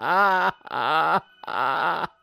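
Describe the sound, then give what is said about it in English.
A voice imitates a character's exaggerated, over-the-top crying wail: three loud, drawn-out sobbing cries with a wavering, strained pitch, separated by brief gasps, with no talking. “This causes Jotna to just kind of like fall to her knees and let out this like horrible wail. And she starts crying like obnoxiously.”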